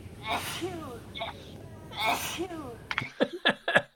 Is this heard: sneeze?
yes